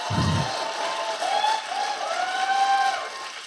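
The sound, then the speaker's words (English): A crowd applauds steadily throughout, a dense wash of clapping with a few high whistles and whoops rising above it, opening with a brief low thump. “Yeah, no, if anything deserves applause.”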